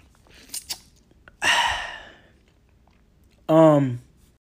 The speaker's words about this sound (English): But for what I got to talk to y'all about, I'm just going to drink water for this.